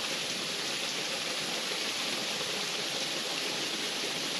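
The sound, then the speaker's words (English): Steady rushing of creek water flowing over rocks, a continuous hiss-like wash with no pauses, even in loudness throughout, no voices present. “Just listening to the sound of the creek behind me and whatever other sounds are in the room or the space that you are in.”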